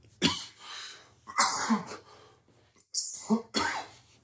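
A loud fit of harsh coughing: four or five explosive bursts in irregular succession, each with a raspy, throaty tail, separated by brief pauses and breaths.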